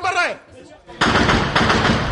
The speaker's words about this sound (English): And everyone's shooting, because the only thing that can stop that vehicle reaching its target is a hail of gunfire. And it's terrifying.